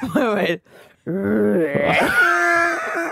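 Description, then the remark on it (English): A person imitates a bear with loud, drawn-out groaning vocal sounds: a short moan, a brief pause, then a longer growl that rises into a higher, wavering wail. “Give us your bear”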